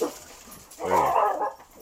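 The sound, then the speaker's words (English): A stray dog roaming the back 40 lets out a single strained, whining bark-like yelp, moderately loud, with a brief whimpering tone trailing off afterward. No one speaks. “We have a stray dog roaming the back 40.”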